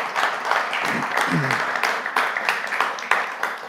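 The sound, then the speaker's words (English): An audience applauds steadily for several seconds, a dense wash of many hands clapping, with a voice briefly rising above the clapping partway through, celebrating a building in Anchor Point, Alaska being named after two members of OSC. “Yes, please applaud.”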